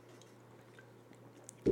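A quiet sip of beer: faint wet slurping and swallowing over a low steady hum, ending with a short, louder thump.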